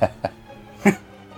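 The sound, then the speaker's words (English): Three short, rough coughs from a man, two quick ones close together and a louder one a moment later, with a faint hum in the background and no speech. “It seems like he's coughing or something.”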